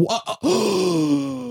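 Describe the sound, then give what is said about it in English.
A person gives a theatrical gasp of surprise: two quick, sharp breaths followed by a long, drawn-out voiced exclamation that fades slightly toward the end. “Gasp and awe.”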